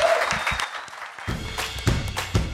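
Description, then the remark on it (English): Audience applause for comedian guest Jordan Gray at the end of a show: a dense, steady patter of clapping across the whole clip, with a few louder claps and a brief whoop or cheer standing out. “Lots of applause for you.”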